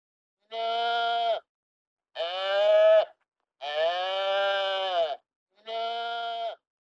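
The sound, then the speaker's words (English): Four drawn-out sheep bleats, loud, each lasting about a second with short silent gaps between them, from sheep being herded over a bridge. No voices or other sounds are present. “So if you had the burning desire to go and see some sheep being herded over a bridge, you're kind of out of luck.”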